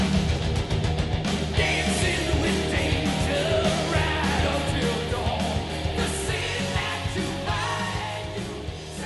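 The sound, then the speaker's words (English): A loud, dense heavy metal track plays throughout, with a singer's raw, sustained scream riding over driving distorted guitars and pounding drums. “I think I know that scream. I think I know that wail.”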